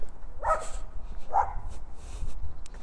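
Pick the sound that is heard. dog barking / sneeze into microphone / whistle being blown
dog barking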